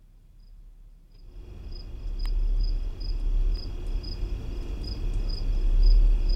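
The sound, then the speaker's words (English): A recording of the Windsor Hum: a deep, steady low-frequency droning hum rumbles low and swells louder after the first second, while faint, regular high-pitched insect chirps repeat above it. No one speaks. “That's the Windsor Hum. Isn't that awful? Imagine having to hear that all the time.”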